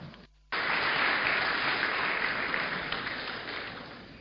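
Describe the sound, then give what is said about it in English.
After a brief pause and a reading of the gospel, an audience breaks into loud, sustained applause: a dense wash of many hands clapping that holds steady for several seconds, then begins to thin slightly. “Don't clap him.”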